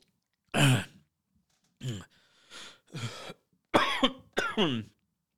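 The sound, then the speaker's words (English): A person coughs and clears their throat in about five rough, gravelly bursts, spaced irregularly with short pauses between them, the last two the loudest. No speech. “I think it's black coffee that's doing it to me.”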